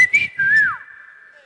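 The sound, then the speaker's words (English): A sharp whistle rises and bends in pitch, then holds as a steady tone that slowly fades out, like a short call to get someone's attention: a husband whistling to call his wife. “Because some husbands call their wife with whistle.”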